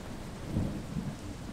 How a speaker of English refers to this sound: Fat green raindrops pattered onto the tractor and ground, and then fell in buckets, making everyone run for cover.